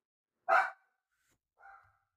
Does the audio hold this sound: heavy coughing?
no